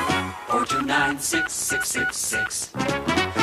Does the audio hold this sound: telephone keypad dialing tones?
yes